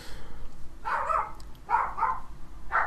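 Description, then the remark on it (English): A dog barks about four times in short, uneven bursts, slightly muffled, over a low steady background hum, with no talking. “Dog. Special guest appearance, my dogs.”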